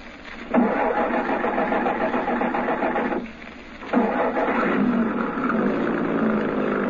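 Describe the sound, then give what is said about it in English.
A truck engine cranks and catches twice, each start followed by a steady, loud rumbling run, with a brief drop in between; no voices. “One nice thing. No window between the cab and the rest of the truck back here. So Brinker won't spot us when he keeps going.”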